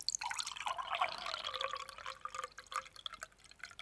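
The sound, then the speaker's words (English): Unflavored kombucha fizzes and bubbles, a dense stream of tiny popping and trickling sounds lasting several seconds, with a sharper tap at the very end. “See, like, it bubbles. I love that.”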